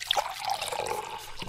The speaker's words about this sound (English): How about some water filling up our bowl and cup? Simple.